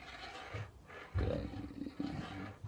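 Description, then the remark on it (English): A deep, rumbling wolf growl swells up loud, rising in a couple of rough surges over a few seconds with no talking. “Wolf.”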